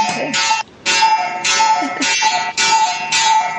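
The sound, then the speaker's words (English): A clock chimes loudly, striking about five or six times in a steady rhythm, each ringing stroke blending into the next. There is no talking. “Another clock, sorry.”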